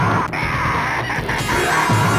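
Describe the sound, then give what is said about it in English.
A harsh, loud character scream from the 1989 arcade game Final Fight rings out, gritty and compressed, with a second shout near the end over a dense, noisy backdrop. “I hope you got the screams in there.”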